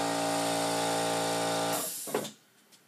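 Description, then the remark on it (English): An air compressor motor drones loudly and steadily with a buzzing, harmonic hum, then shuts off abruptly, leaving a short hiss and a couple of faint clicks. No one speaks. “What kind of an idiot leaves his air compressor on when he's recording?”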